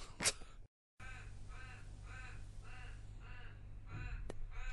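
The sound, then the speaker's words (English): A crow flying past caws repeatedly, about six harsh, raspy calls in a steady rhythm, over a constant low rumble, with a brief click and a short silence at the start. “I think it might have been a crow flying past.”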